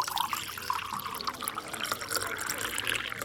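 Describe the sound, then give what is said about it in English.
Water pours steadily for a few seconds, a continuous bright splashing and trickling, with no one speaking over it. “Can we have some water? Yes, of course.”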